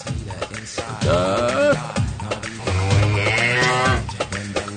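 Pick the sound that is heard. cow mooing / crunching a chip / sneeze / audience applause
cow mooing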